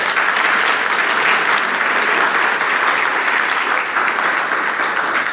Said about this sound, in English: All right. Thanks, Terry. Appreciate that. You can give Terry a round of applause.